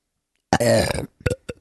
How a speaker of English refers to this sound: Whoa, that's a beautiful burp symphony.